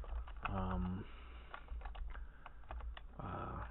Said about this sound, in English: sorry for my click-clacking and typing and stuff like that you might occasionally hear.